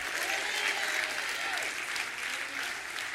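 A church audience claps steadily in dense, continuous applause that stays loud and even throughout, with a faint murmur of voices underneath.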